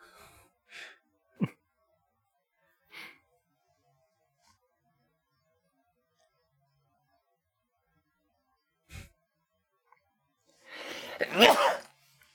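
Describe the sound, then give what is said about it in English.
A single loud sneeze bursts out near the end, after several seconds of near-silence broken only by a few faint breaths and small clicks. “Oh, God bless you.”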